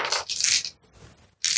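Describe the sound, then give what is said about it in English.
Damage dice are rolled in a tabletop role-playing game, rattling and clattering across a hard tabletop in close, bright bursts, then going quiet for a moment before a final sharp clatter. No voices are heard. “Roll your damage dice.”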